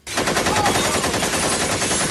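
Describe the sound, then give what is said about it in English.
A loud, rapid burst of gunfire from a Tommy gun, shots firing in quick succession, sustained for about two seconds with no talking. “Don't you kind of like firecrackers if I just pull the trigger here like this.”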